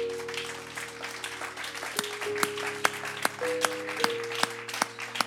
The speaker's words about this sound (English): And if you want to join me, then just give God a round of applause. Amen.